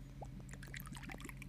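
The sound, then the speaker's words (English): Monster energy drink is poured for a Monster Bomb, a Jägerbomb-style shot, with bright bubbling, gurgling splashes and crackling carbonation over a steady low background hum, lasting just over a second. “I'm going to do a Monster Bomb.”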